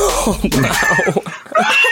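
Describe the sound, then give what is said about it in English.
A person's voice imitates an animal call, halfway between a dog bark and a caribou scream: a loud, raspy, strained cry that rises and falls, broken into a few harsh bursts. “makes noises halfway between a bark and a caribou scream”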